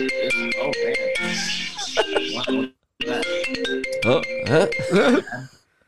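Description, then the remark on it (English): A phone rings with an incoming call: a melodic ringtone, a tuneful electronic phrase that plays, breaks off briefly, then repeats at a steady volume before fading out. “Getting phone calls might be good timing, I guess. Sorry about that.”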